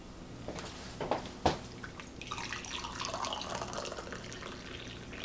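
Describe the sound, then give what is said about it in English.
A few sharp clinks and taps, then a steady stream of freshly boiled hot water poured from an electric tea kettle into a small mug, splashing and gurgling continuously for about three seconds, with no talking. “So this is an electric tea kettle.”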